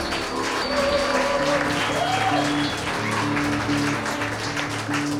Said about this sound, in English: Let's have a round of applause for our new friends.